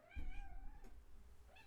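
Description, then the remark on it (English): A cat named Lemmy gives a drawn-out, wavering meow, followed by a short second call that rises at the end, over a low background rumble. “No, kitty.”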